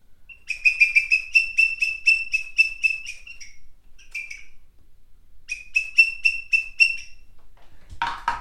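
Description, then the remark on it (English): A bird-call whistle imitates a green woodpecker's laughing call: a quick run of about ten piercing, even notes, a short pause, then a second shorter run, loud. “A green woodpecker.”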